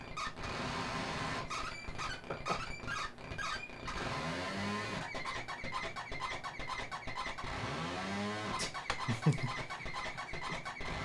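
A chainsaw snarls and revs in rising and falling sweeps, broken by harsh metallic squeals and clanking bursts as the blade strikes a spike in a tree. Loud, continuous and grinding.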